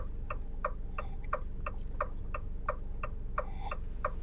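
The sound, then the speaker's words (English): A Jeep's turn signal blinker ticks steadily, about a dozen evenly spaced clicks at a quick, regular rhythm, heard alone over a low engine-like rumble. “Ah, the beautiful sounds of my Jeep blinker.”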